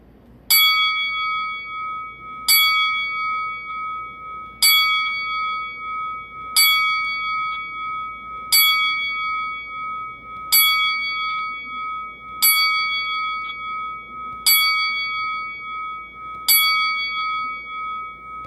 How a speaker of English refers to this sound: And right now the Top Rope Report would like to pay tribute to the career of Mr. Wonderful Paul Orndorff with a 10-bell salute.